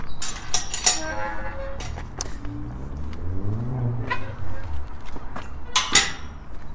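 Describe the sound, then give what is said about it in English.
A metal gate on the closed Avon path creaks open with a long, squealing, wavering hinge groan, framed by sharp metallic clanks and rattles at the start and a loud clang as it shuts. “It's a very satisfying gate.”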